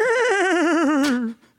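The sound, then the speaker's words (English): A single loud horse whinny with a quavering, trembling pitch that slowly drifts downward before cutting off. No talking. “Oh, look at who we have here. It's Hugh the horse.”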